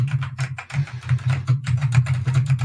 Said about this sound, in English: All right. It's not 1930. Get a computer. Why are you on a typewriter?